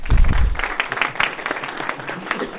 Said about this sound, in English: I generally don't like applause, but we didn't really have another opportunity to do that.